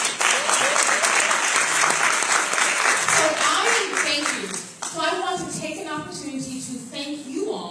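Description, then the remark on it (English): A crowd applauds its guests with dense, steady clapping for several seconds, then the applause thins and fades as a voice begins speaking over the last of it. “Let's give our guests a round of applause.”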